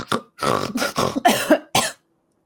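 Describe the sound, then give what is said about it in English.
A voice imitates a creature's rough, throaty coughs and snorts as it shifts, trying to get comfortable, in a quick run of five or six loud bursts, ending abruptly in silence. “It coughs and snorts and shifts, trying to get comfortable again.”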